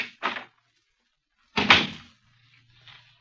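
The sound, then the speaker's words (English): A heavy door to the Black Museum on the lower ground floor of New Scotland Yard is worked open and then swung shut: first a short clunk of the latch, then a loud, resonant thud with a booming low end that fades into a quiet echo. “Behind this door...”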